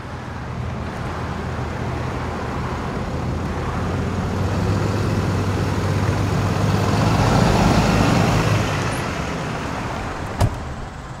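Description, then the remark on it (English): A steady engine drone with low rumbling road noise from a truck driving on a road, swelling slightly louder midway before a brief sharp click near the end. No one speaks. “try to be low key and drive this truck, but you got the camera all out.”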